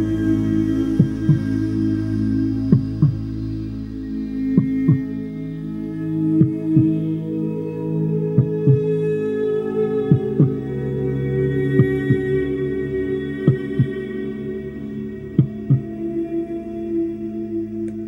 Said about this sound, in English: You notice how now your heart feels like it's swelling. You can feel your heartbeat, like your heart's about to pop out of your chest.